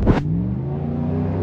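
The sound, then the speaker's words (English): A truck engine accelerates loudly past on a street, opening with a brief rushing burst and then settling into a steady, droning rumble with strong low tones throughout. “Oh, the truck beat you, fucker. Dumb fuck. Oh, the lights. The truck's faster.”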